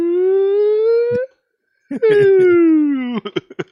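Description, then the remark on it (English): A voice imitates the siren-like alarm from Mario Golf on the original Game Boy, heard whenever the ball is hit: a sustained wail that slides upward, breaks off, then returns as a long downward glide, ending in a few short, choppy vocal bursts. “The one with the alarm, the siren noise, right?”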